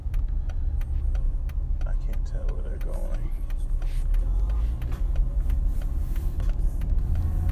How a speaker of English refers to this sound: What is going on? They're just like in the way. These big semi trucks or whatever.